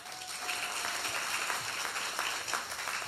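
A crowd applauds steadily for about three seconds, a dense wash of many hands clapping at once with a fairly even loudness throughout.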